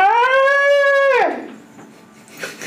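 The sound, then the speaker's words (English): A voice imitates a scream with one loud, high, strained wail held steady for about a second before sliding downward and trailing off into faint, breathy noise. “As you continue down this corridor, you hear the screams of a person.”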